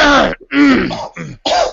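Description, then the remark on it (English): Someone clears their throat several times in a row, a loud series of rough, gravelly bursts with brief pauses between them, and no talking. “Clear my throat here.”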